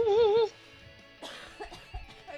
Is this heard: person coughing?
yes